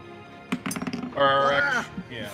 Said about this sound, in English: I'm dropping everything. I spilled my drink. I dropped my dice.